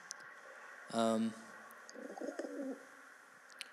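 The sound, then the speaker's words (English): A single short, steady pigeon-like coo, loud, seemingly voiced by a person imitating a pigeon sitting in a car's passenger seat, followed by a brief stretch of quieter mumbled talking. “who is sitting in the passenger seat next to me, in the body of a pigeon, of course.”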